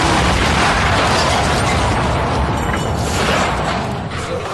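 A car bomb explosion roars loud and close, a dense wall of blast noise and rumble that holds steady for several seconds before easing slightly at the end, with no voices over it.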